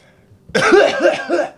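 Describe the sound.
A voice imitates a man coughing on a birthday cake: one loud, rasping burst lasting about a second, with a few chesty pulses inside it, preceded and followed by near silence.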